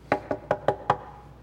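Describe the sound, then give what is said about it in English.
Five quick, evenly spaced knocks on a door, sharp, each one short with a hollow wooden thud, followed by a moment of quiet. “So Jesus says, he's standing at the door and he's knocking.”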